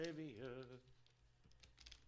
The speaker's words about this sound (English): We're shuffling it up. Shuffling them up, and I made sure to take out the ones cards that we did already last week.